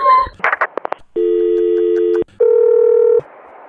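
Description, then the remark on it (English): A rapid series of short telephone dialing beeps, followed by two long, steady phone tones separated by a brief pause, loud as if heard through a handset. “is that you on the phone right now?”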